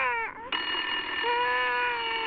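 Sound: telephone ringing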